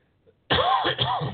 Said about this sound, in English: Excuse me. I don't have a glass of wine tonight. That's probably why I'm coughing my head off.